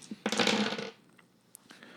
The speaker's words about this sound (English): do roll it with hunger dice because you're still feeding.